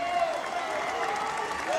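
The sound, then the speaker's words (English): A large arena crowd in Evansville roars and applauds continuously at the end of a basketball game won 67-55 by IUP, earning a trip to the Final Four; a dense, loud wash of cheering and clapping that stays steady throughout with a few higher shouts rising above it. “Everybody on their feet. IUP to cheer for a win and a trip to the Final Four.”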